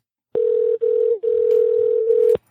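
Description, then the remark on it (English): A steady, loud electronic phone tone hums for about two seconds, broken by a couple of very brief gaps, like the ringback heard while an outgoing call goes unanswered. “I was like, what's your number? We're calling you. Motherfucker gives you his number, then don't answer the fucking phone.”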